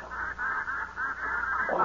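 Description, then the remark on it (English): Ducks calling in a rapid, steady run of nasal quacks, about five or six in under two seconds, fairly loud with no voices over them. “Now look, when them ducks start flying over, you guys watch yourselves.”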